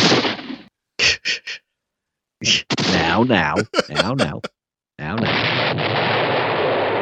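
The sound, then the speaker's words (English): Three quick gunshot-like bursts, then a stretch of voiced vocal noises, then a loud sustained roar like an explosion that carries to the end. “Of course, if they've shot you and blown you up, there's not much point in ringing the doorbell.”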